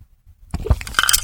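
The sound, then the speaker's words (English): Chewing of a chicken wing, including its gristle: after a brief silence, a burst of crisp, crackly crunches and wet clicks, moderately loud and irregular, with no voices. “Ooh, he's eating the gristle.”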